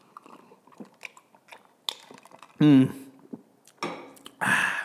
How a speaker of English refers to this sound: Sipping on that liquid death. Gotta stay hydrated. And I can't really promote hydration, because this is actually my first water.